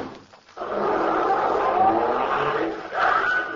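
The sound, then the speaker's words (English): After a brief lull, a car engine roars up loudly and holds a steady, rushing drone as the vehicle speeds away, with a whining rise near the end. “Yank the dame back in the car. We'll hold her as a hostage.”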